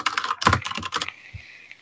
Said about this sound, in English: Vigorous typing.